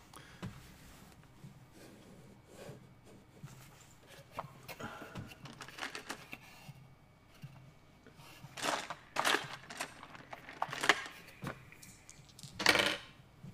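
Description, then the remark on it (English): Secret dice clatter and tumble across a hard tabletop in a few separate bursts of sharp, rattling clicks, fairly loud, with no voices over them. “Yes, I'm rolling some secret dice.”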